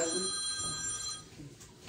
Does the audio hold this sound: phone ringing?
yes